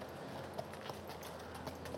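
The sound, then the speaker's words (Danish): Hooves clop steadily on a hard surface as horses walk by on their way out to pasture, a regular series of sharp knocks over a soft background hiss, with no one talking. “Ja, vi skal ikke pisse de her heste af. De kan være farlige.”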